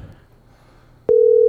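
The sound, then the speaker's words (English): After a quiet stretch of faint low hum, a loud, steady telephone ringing tone abruptly begins and holds one pitch near the end, like an outgoing call ringing through. “We got her now. It's ringing.”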